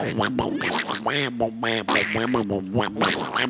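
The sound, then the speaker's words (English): Someone does a raspy, garbled Donald Duck voice impression, a rapid stream of squawky quacking babble for several seconds, fairly loud. “Oh, I can do Donald Duck.”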